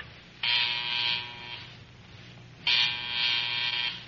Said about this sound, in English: You gotta buzz the phone? Yeah, right now. I hope it works.